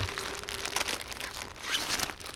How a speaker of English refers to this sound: Right, one last rustle in the bag